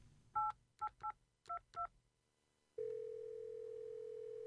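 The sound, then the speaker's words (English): Five quick touch-tone beeps as a phone number is dialed to call a man working in New York, followed by a steady, continuous tone on the line. Clear, with no talking. “Get him on the phone. I want to hear it from him. Can you call him?”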